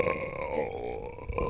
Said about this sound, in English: Is it just burps?